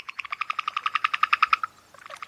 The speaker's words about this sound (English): Or you'd then hear, you know, a frog starting to sing.